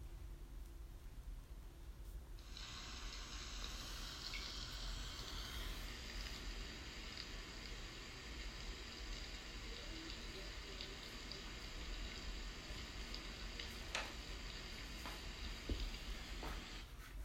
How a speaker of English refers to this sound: Here is a 15-second YouTube recording of black soldier flies. The caption says, it sounds like rain.